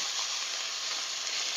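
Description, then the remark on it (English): A salt-and-pepper-seasoned chuck roast sears in olive oil in a hot Dutch oven on the stove for 3 to 4 minutes per side, with a steady, bright sizzle and crackle of spitting oil, holding an even loudness throughout with no voices. “Just to give it a nice sear before we add everything else to the pot.”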